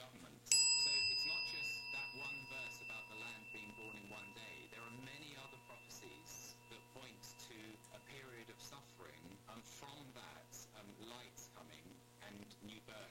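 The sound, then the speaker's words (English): A meditation chime is struck once near the start and rings on with a long, shimmering sustain that fades only slowly, while soft speech murmurs underneath the lingering tone. “As we listen to the chime, let us remember our connection to each other and the world around us.”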